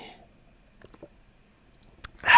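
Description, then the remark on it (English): Someone sipping a drink: a few soft, wet mouth clicks and a quick gulp, then a sharp click and a short burst of breathy noise at the end. No one speaks. “I need to have a sip. My mouth's really dry.”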